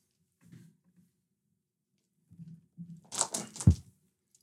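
A kitten named June chews on cords: soft, faint low rustles first, then a quick cluster of crisp gnawing and crunching bites near the end, with no voices.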